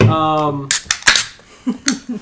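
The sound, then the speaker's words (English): A steady humming tone gives way to three or four bright, sharp clinks of drinking glasses knocked together in a cheers toast in quick succession, followed by a few short, low murmurs. “What were you saying about drinking sound effect. Okay. There it goes. We'll cheers that too.”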